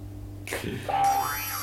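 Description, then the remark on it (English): An electronic game show buzzer sounds after a brief silence: a sudden burst, then a steady mid-pitched tone and a rising sweep, holding at a moderate level until the end, with no talking. “You still have a chance to buzz in.”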